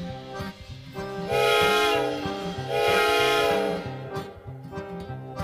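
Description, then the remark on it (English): Two long, loud train-whistle blasts sound over a steady chugging rhythm, like a train rolling in. The chugging beat continues quietly between and after the whistles, with no one speaking. “On the road to hell, there was a railroad car.”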